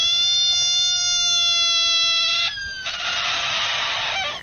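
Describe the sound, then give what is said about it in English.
A novelty frog ringtone plays loud: a steady, whiny electronic tone like a cat's meow, then a raspy, hissing squeal like air escaping a deflating balloon. “Yeah, it sounds like it starts off sounding like a cat, and then it goes. Then it almost sounds like a balloon.”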